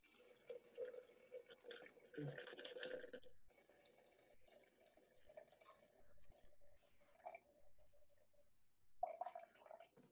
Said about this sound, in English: So then I'm just going to add 250 grams of water.